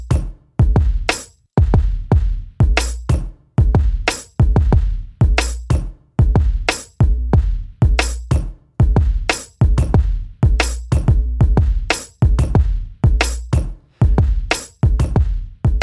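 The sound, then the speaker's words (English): A punchy drum sample repeats in a steady groove, with loud, sharp hits carrying strong low thump and bright crisp tops, each decaying quickly before the next. No talking over it. “I'm going to play this drum maybe one more time.”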